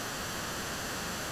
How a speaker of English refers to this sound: Oh, I'm getting like white noise in this. Anyone else? Are you hearing that as well? Yeah, I can hear that.